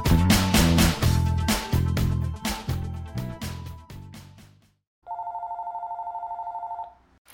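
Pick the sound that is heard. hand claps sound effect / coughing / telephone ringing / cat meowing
telephone ringing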